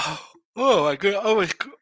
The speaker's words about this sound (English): I'm yawning here.